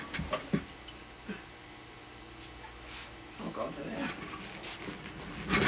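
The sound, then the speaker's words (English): A new puppy pants in quick, breathy bursts and lets out a few soft, high whimpers, fairly quiet, with short pauses between the sounds. “I have a new puppy.”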